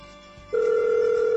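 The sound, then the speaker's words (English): A phone line ringing through a call to a McDonald's restaurant: after a brief quiet hiss, a steady, fairly loud electronic ring tone starts and holds unbroken to the end, with no voices. “It keeps Mick ringing! I need them to McAnswer!”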